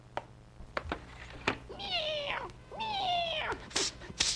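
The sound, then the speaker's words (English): A female cat meows twice in a row, each call long, rising and falling, clear, with a few sharp clicks and knocks around the calls. “did you feed the cat?”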